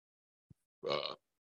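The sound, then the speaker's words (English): A single short burp, low and throaty with a buzzy harmonic ripple, lasting under half a second after a faint thump, then silence. “I know you ate when I burp.”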